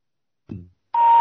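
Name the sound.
telephone number being dialed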